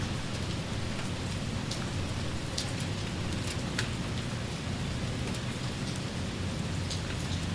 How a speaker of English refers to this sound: Oh my god, it's getting so fucking loud with the rain. Should we pause? Yeah. And then go in to my car. Yes, yes, we should. Okay. ASMR rain sounds.